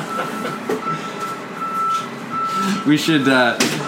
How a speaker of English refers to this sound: We've got the garbage truck doing its thing. Smashy, smashy, smashy!